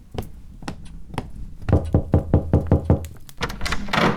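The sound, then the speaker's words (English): Someone knocks on a door: a few scattered raps, then a quick, steady run of about seven firm knocks, followed by a brief rustle of movement. No one speaks. “Well, we have to open the door anyway.”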